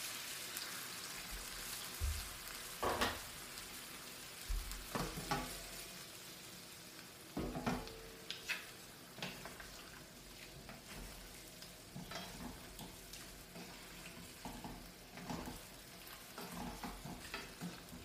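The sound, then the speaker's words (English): Loud, steady sizzling from a hot pan as hot water is poured in while cooking, with crackling bursts and the scrape of stirring throughout. No voices. “I am using hot water. I want to make it really clean today. So put some hot water.”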